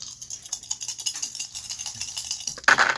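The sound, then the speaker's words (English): Four dice, rolled for a speed roll needing 5 or higher in a board game, rattle and click steadily for a few seconds, as if shaken in a hand or cup, then clatter louder onto a hard surface at the end. No one speaks. “That means I roll 4 dice.”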